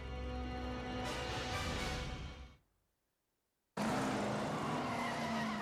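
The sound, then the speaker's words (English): A car roars past, loud and rough with a hint of tire noise, fading into a moment of silence before an equally loud burst of car noise cuts back in. “Wow, that is a nice car.”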